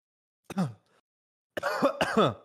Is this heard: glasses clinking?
no